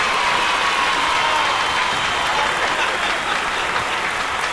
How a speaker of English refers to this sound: I mean, people have been laughing, cheering, applauding. Kids have liked it.